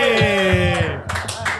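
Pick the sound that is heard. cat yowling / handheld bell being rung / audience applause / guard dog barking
audience applause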